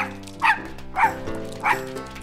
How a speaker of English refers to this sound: He barked and wagged his tail and spun around in circles.